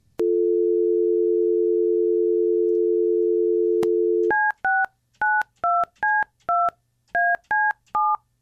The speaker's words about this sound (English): So we have a phone number here, and let's give a little ring-dingy-do and find out all about soon-to-be a Knoxville legend,